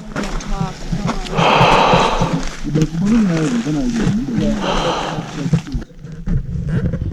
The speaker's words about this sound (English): I'm breathing heavy like this.